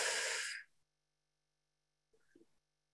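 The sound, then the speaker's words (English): A loud breath drawn in through the nose during a breathing exercise, a steady airy hiss lasting about half a second, followed by silence and then a brief, faint murmur. “Breathe again in the nose.”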